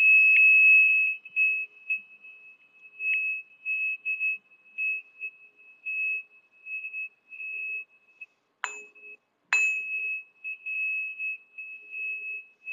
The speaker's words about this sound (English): So by sweeping through, what I mean is I'm finding the Earth Star, and then I'm just moving the fork from side to side slowly, around, kind of following the toroidal flow of the field. There we go.